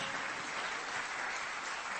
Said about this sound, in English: Can you clap your hands one more time for the Lord? Hallelujah.